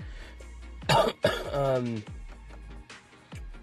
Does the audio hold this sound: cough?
yes